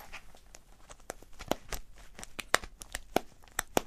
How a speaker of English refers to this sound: Yes, that's a popper of some form.